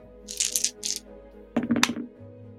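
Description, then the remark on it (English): Two dice clatter across a hard tabletop in two quick rolls: a light, bright rattle first, then a louder tumbling clack about a second later, with no voices. “So I'm just going to grab 2 fresh, hot, fresh, new dice.”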